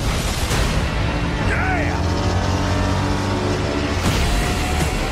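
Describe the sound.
A loud car engine drones steadily throughout, its pitch holding with a brief rising whine partway through, while indistinct voices murmur underneath and a sharp knock sounds near the end.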